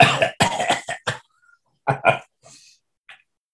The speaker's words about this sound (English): It sounds like it was sitting, like the way that you're coughing sounds like it was probably just sitting in the back for quite a while.